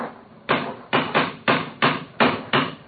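A cane strikes a stone bridge parapet about seven times in an uneven rhythm. Each hard, sharp knock carries a brief ringing tail, with no voices over it.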